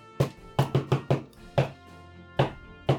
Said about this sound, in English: It's just knocking on the door.